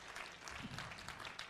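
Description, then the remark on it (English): An audience clapping their hands to the Lord during a worship service, a dense, steady wash of many overlapping claps with no single beat standing out, holding at an even loudness throughout. “One more time, would you just clap your hands to the Lord?”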